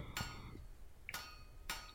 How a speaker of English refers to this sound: That obviously is hammers and shields banging against each other, welcoming me to Valhalla.